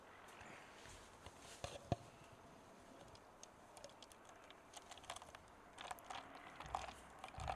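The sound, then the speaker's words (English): Beer pours into a glass with a soft, steady fizzing hiss, peppered throughout by tiny crackling pops of bubbles. It stays fairly quiet, growing slightly busier toward the end, with no talking. “Yeah, pouring it up with a nice little ASMR.”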